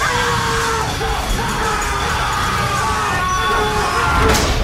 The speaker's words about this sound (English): props to the performers, too, but, like, I can't with the scream compilation.